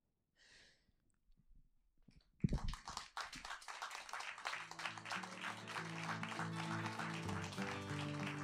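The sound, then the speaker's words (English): After a soft breath and brief quiet, an audience at an evening performance event breaks into loud, sustained applause for the performers with dense clapping, while steady music rises underneath toward the end. “Another round for round of applause for Ben Norris and Keisha Thompson”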